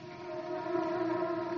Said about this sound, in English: My, that boy snores loud. Oh, that ain't Junior. Those are my bees snoring.